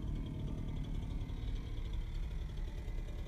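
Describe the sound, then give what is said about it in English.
A leaf blower engine idles steadily and continuously as its operator walks past, a low rumbling drone with a faint high whine above it, even in loudness throughout. “He's got it on idle and he's not revving right now.”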